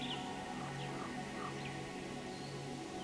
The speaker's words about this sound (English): I hear birds singing songs.